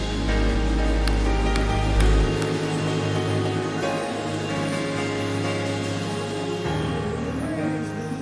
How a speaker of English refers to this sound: Clap your hands all over this house one more time, as loud as you can.